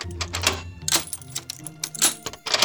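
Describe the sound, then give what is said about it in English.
A key unlocks a door in the floor, with a series of metallic rattles, scrapes and sharp clicks in the lock over a couple of seconds, no voices. “The door in the floor is unlocked!”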